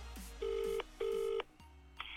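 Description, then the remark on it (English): A phone call to the caller's wife ringing out: two steady, buzzy ringback tones in quick succession, clear, with no one speaking. “Let me call my wife now. Hold on. She'll know what it's called. Just phone up.”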